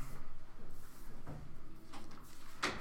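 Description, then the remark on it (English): A door is pushed closed with a few soft rattles and shuffles, ending in a sharper latch click near the end; fairly quiet, with no talking. “I'm going to shut the door quick.”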